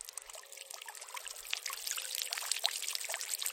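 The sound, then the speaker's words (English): Water is pushed through a plastic filter housing holding a filter membrane, the housing about twice the size of a 50 pence coin: a steady hissing trickle with fine splashy bubbling that builds slightly louder toward the end. No one speaks. “So then we just push the water through.”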